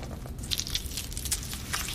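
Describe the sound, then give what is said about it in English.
Wet chewing and squishing of a lychee in a man's mouth during a film scene, with soft crunches and juicy smacks repeating irregularly over two seconds, no talking. “It's funny, they're talking about her eye and he's eating that fruit. A lychee.”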